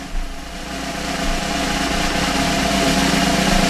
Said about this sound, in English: A really long drum roll here is the pileated woodpecker. There it is. The ABA's Bird of the Year.